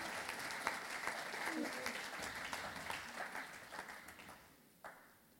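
A church audience breaks into a steady round of applause, a dense crackle of many hands clapping that holds strong for several seconds before thinning out, with one last clap near the end.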